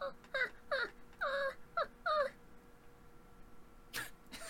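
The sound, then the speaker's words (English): A person's voice imitates a baby monkey with five quick, high, squeaky whimpering calls in a row, then, after a quiet pause, one more brief squeal. “I've been making, like, little baby monkey noises.”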